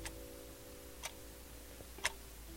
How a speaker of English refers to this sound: And now, just as my clock is ticking on my hand, I can only imagine time fast-forwarding to this moment.